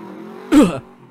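An Uber car's engine hums steadily, then roars in one short, loud rev lasting about a third of a second before dropping back toward idle, as the driver does donuts.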